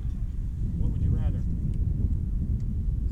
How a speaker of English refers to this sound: Wind really gusting right now.